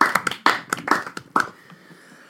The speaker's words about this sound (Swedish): Nej, men jag tycker han får den. Han har gjort ett mycket bra jobb. Ska han ha? Applåd. Ja.